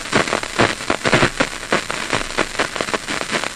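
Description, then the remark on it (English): Dense, irregular crackling and popping fills the whole stretch, sharp clicks bursting in uneven clusters over a steady hiss: electrical static of individual brain cells firing inside a resting rat's head, picked up by microphones in a cable coming out of its skull. No voices. “You can hear this kind of snap, crackle, pop sound. These are individual cells that are firing.”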